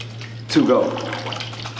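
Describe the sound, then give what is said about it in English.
A sudden splash as pasta and water are poured into a cup with holes, followed by a steady rush of water draining out through the holes, fading slightly, with a low hum underneath. “And what's really cool about this, and this is why it's easier, when you pour the pasta in here, the water is gonna drain out of those holes at 30 seconds, right?”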